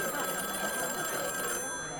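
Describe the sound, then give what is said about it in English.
A phone alarm rings steadily for about two seconds, a sustained bright electronic tone at moderate loudness over a busy, noisy background, fading slightly near the end. “Oh, my phone alarm again.”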